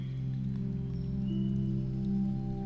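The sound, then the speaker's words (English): Steady rain patters without pause, a soft continuous wash of falling drops over a low, sustained droning hum. No voices, and the level stays even throughout. “So all week we'll begin our meditations with just a bit of guidance, and then ease into the soothing sounds of water.”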